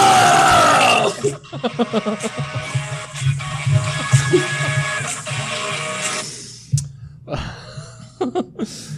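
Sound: person screaming loudly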